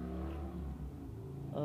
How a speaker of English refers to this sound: Of course. Yes, come, all ye motorcycles. Just, yes, this is the time to drive by as loud as you possibly can while I'm trying to record.